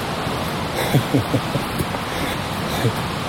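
A loud, steady rushing river, heard while crossing back over it by a bridge, roars without pause, a dense hiss of water filling the whole clip, with a few brief murmurs of a voice poking through near the start and end.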